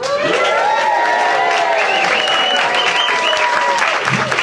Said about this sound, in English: And not only that, it's our first podcast with our live audience right in front of us. A round of applause for the audience.